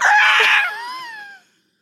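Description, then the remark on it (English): A person imitates a hawk's cry with a single loud, raspy screech that thins into a high, wavering tone and slides downward before cutting off, with no other sounds around it. “For some reason, as soon as you said the call of a hawk, I was like distracted by like what that would be like.”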